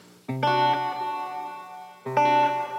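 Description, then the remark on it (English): Two strummed electric guitar chords played through a Polymoon delay pedal with the delays smeared, each ringing out with shimmering, smeared repeats that hang like reverb; the only reverb on is the amp's. Played alone with no talking, at a moderate level. “So it's almost got some reverb qualities, which again. So that's the Polymoon, but it can get really dreamy when you know.”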